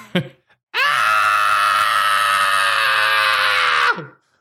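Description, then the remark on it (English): A man's voice lets out a long, sustained, strained scream of about three seconds, imitating the screaming goat from The Grinch, preceded by a brief vocal burst and cutting off abruptly. “you're sounding like the screaming goat from The Grinch, and I love it.”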